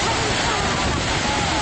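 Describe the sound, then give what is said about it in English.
A loud, steady rushing whoosh of blood flow from an abdominal aortic aneurysm, heard through a stethoscope placed over a patient's belly, continuous with no breaks, sounding almost like a waterfall. “I was listening to a brewery of an aortic aneurysm and called the vascular surgeon.”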